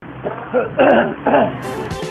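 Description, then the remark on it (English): A few raspy coughs come in quick succession over a muffled, phone-like line, with two louder harsh bursts in the middle and a short hiss of noise at the end. “And now listen to my goddamn cough.”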